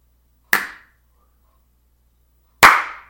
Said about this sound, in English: Actually, that's me just picking my gut up and like slapping it on her back.